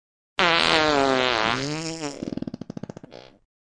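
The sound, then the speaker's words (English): A long, loud, wet fart that starts as a sustained brassy blast, bends in pitch, then breaks into rapid sputtering pulses before trailing off, with no talking. “It was, most definitely and undeniably, a fart. It was loud and wet and both thoroughly disgusting and hilarious sounding at the same time, and it sounded almost exactly like this.”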